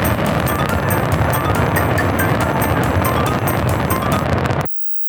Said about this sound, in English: Yep, that was supposed to be 18 minutes worth of planned pyrotechnics and fireworks, but they all ignited at once. One of the most epic fails I have ever witnessed, and I think probably most people have ever witnessed.